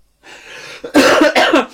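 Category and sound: human body sound, coughing fit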